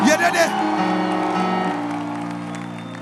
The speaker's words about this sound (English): Clap your hands for the Lord and give Jesus a shout of victory.